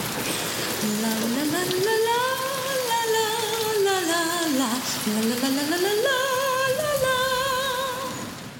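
Steady rain hisses throughout while a voice hums or sings a smooth, wordless melody on top, rising and falling without a break until the end.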